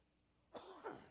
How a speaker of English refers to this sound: Just cough it up.